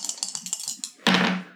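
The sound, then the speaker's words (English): Dice rattle in a quick, irregular series of light clicks, then tumble onto a surface in a louder burst of clatter that fades after a moment. No one speaks. “Okay, roll wild.”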